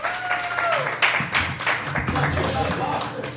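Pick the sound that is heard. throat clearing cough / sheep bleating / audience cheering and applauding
audience cheering and applauding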